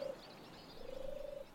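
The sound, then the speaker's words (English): A turtle dove coos with a soft, purring, low tone: a brief note, then a longer rolling phrase. It stands alone against faint background hiss, with no talking. “In the meantime, turtle doves, and a word from our sponsors.”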